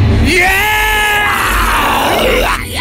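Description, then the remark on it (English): A man at a concert lets out a long, loud, raw scream that rises and bends in pitch, over a noisy crowd-like background. “Can you give me a little bit of rock? Can you scream?”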